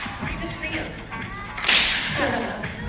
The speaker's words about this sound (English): Do you guys want to put in a clap? We can clap.